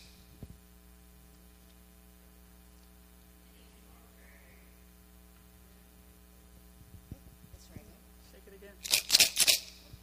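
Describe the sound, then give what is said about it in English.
A low steady electrical hum runs throughout, then near the end a shaker filled with pennies, rock salt or paper clips rattles in a few quick, loud bursts. “These three shakers contain pennies, rock salt, and paper clips.”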